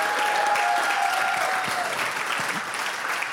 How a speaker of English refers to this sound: Can we clap everyone, the staff, clap for all the volunteers. Let's thank everyone for serving. Come on, we can be louder than that and really thank everybody. The worship team, clap for them.